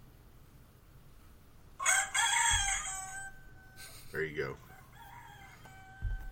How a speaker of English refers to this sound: You're gonna, my alarm is gonna go off right now.